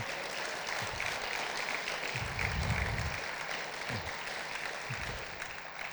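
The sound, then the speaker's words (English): A church audience claps steadily for several seconds, a dense, continuous patter of many hands that stays fairly even in loudness, with a slight swell in the middle. “I think that deserves a round of applause, church.”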